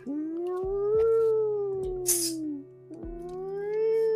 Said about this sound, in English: Getting closer and closer, heading your direction. A cat? Yeah.